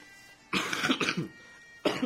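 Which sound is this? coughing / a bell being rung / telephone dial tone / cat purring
coughing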